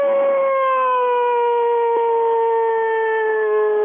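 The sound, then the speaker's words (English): A coyote locator howl blown on a hand call: one long, loud, steady, non-aggressive wail that drifts slightly lower in pitch over about four seconds, with no talking, used to get coyotes in the area to answer back. “That's a locator howl, yep, right? You want a non-aggressive howl to start off with.”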